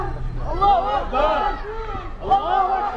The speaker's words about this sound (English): An impromptu protest breaks out as the crowd swells in size and anger.